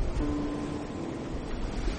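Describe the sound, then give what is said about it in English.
A steady, hissing wash of ocean surf rolls rhythmically onto a white sand beach, a continuous broad rush of water at moderate loudness with no voices present. “The waves wash in near you rhythmically.”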